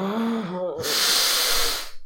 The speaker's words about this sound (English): you need to stop making noise. Just breathing so loud.